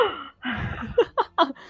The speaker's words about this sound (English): Can I gasp as a free action?